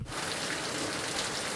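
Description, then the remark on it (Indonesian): Steady rain pours down in a dense, continuous hiss, fairly loud, with no breaks or other sounds over it. “Apabila sampai apabila mereka tengah pasangkan kemah tu, musim hujan.”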